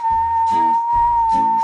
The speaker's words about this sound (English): After a lot of practice,People can learn to understand this new language, a whistle language.